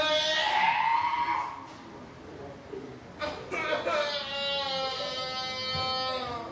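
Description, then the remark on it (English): A baby's crying slowed down with a slow-motion video filter: deep, drawn-out wails that waver and bleat almost like a goat, two long cries separated by a brief gasping pause, loud with no talking. “The disturbing trend is people are uploading slowed down audio and video of their babies crying and sharing the footage.”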